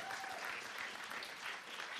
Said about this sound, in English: hear that warm applause for me? For me and my segment?